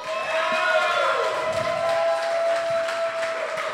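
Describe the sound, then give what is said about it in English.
An audience applauds and cheers steadily throughout to vote for the winner of a caption round, with dense clapping and raised voices whooping over it, fairly loud and continuous. “Who will take this by applause, cheers, whatever you want to do?”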